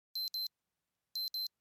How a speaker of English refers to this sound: You will hear this tone when the 8 seconds have completed.